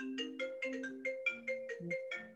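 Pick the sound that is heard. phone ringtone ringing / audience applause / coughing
phone ringtone ringing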